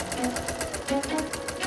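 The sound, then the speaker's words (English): A sewing machine runs steadily, its needle clattering in a fast, even rhythm with a faint motor hum underneath. “There was Jamie's sewing machine.”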